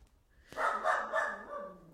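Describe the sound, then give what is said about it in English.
A dog named Parker barks in the background in a short burst of two or three yelping, slightly whiny barks that run together, moderately loud, with no one talking. “If we can hear Parker barking in the background, he also agrees.”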